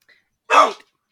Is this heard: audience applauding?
no